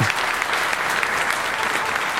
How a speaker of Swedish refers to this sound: Och därför tycker jag det var så otroligt kul att vi vann Swedish Beauty Award. Ja, en liten applåd. Ja, det var en stor applåd.